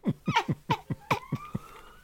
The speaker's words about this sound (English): Oh my God. Can everyone else hear the police siren?